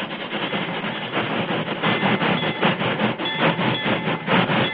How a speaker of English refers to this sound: He seized a flare, lit it, and ran toward the onrushing train. Stop! Can't you hear me? Stop! Stop the train!